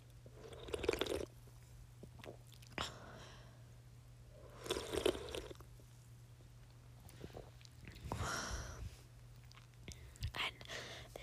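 Quiet sips of sparkling water: a few separate gulps and swallows with a soft fizzy hiss, spaced apart over a steady low electrical hum.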